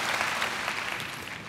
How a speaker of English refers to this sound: Let's clap and praise God for the kind of God that we have.